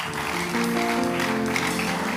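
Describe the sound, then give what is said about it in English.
A church audience claps together as an offering to God in a dense, sustained wash of applause, steady and fairly loud throughout, with held keyboard or organ tones sounding underneath. “If you are here, give God a clap offering.”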